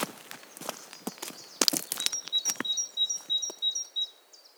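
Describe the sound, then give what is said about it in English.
Scattered, irregular taps of rain just beginning to fall, sharp drops spaced unevenly, while a bird chirps repeatedly in a quick rising pattern. No one speaks. “We've only just started and so has the rain.”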